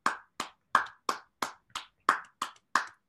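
A slow, polite golf clap given as a consolation for a close quiz answer: about ten crisp, evenly spaced hand claps at a steady, unhurried rhythm, moderately soft, with no voices.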